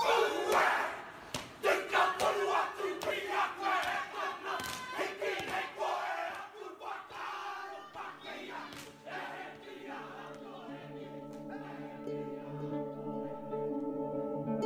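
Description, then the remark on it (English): A haka war chant performed by tangata whenua greeting new arrivals in Aotearoa, New Zealand, with spears: a group shouts in forceful, rhythmic bursts punctuated by sharp stamps and slaps, then settles into a loud, sustained, droning chant of many voices. “The haka. I had no idea then what their spears and shouts were for.”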